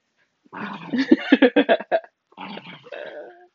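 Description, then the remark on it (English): A puppy named Mushu grunts and grumbles, a quick run of short throaty pulses followed by a brief pause and a longer, rougher growl-like grunt. “Moosh, you silly puppy.”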